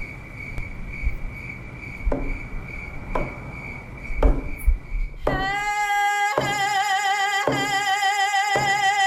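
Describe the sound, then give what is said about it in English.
Crickets chirp at night under a blue moon in a steady, shrill trill for several seconds, broken by a few soft knocks, before melodic music fades in and carries on over them. “Today, under the glowing light of this spectacular blue moon, and with the song of the crickets, that knowing is coming into fruition.”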